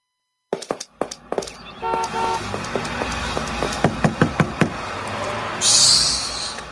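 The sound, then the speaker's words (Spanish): Sharp knocks on a door, a quick cluster at first and then a firmer run of about five raps, over a steady background with a brief hissing buzz near the end. “Mira, avanza a abrir la puerta. Eso, hombre, toca el timbre.”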